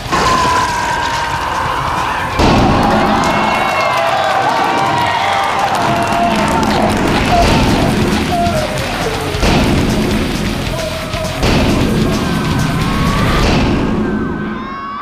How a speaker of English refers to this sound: That's quite a trailer. Bravo. For a Blu-ray.